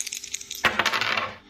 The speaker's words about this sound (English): All you have to do is call odd or even on a roll of the dice.